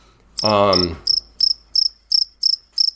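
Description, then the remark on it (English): A brief voice-like tonal sound gives way to a cricket chirping sound effect played from a phone: about seven sharp, high chirps repeating at a steady, quick rhythm, fairly loud and clear against otherwise quiet background. “Anytime I talk to you, I have the crickets ready to go.”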